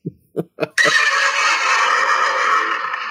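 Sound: horses whinnying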